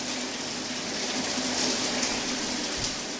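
A shower at the Newstalk radio station runs steadily, a continuous hiss of water spraying and splashing at an even level throughout, with no voices.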